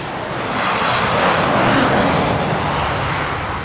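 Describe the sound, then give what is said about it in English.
A Typhoon fighter jet roars past, a very loud, broad rushing thunder that swells to a peak midway and then begins to fade, with no voices. “And if you want to hear exactly what a Typhoon sounds like, have a listen to this. Oh, and do be careful. This is very loud.”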